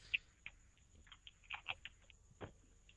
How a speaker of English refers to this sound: Are you Googling Netroots? Am I what? Are you Googling Netroots? It sounded like you were typing on your computer.